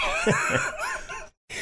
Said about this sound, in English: I'm sorry, I keep clearing my throat.